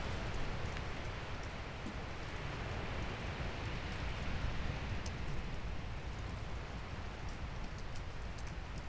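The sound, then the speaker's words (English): Steady rain patters down on fallen leaves in a garden, a continuous dense hiss with scattered crisp drop ticks, even in level throughout with no voices. “We'll leave you with these sounds as we sit here and enjoy the sounds in this garden, rain falling on the fallen leaves.”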